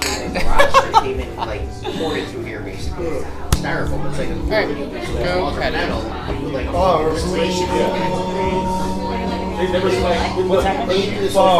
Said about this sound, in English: Cheers, guys. Cheers. We gotta do the cheers by the microphone. 1, 2, 3. Cheers.